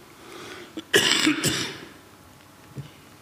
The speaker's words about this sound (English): One of the things you'll learn about me is that I have a lung condition, and I cough occasionally, I'm sorry.